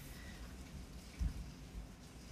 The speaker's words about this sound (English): You might be able to hear the hail pelting off the window in my dining room. Like, the rain is raining sideways. It's just like coming out the window.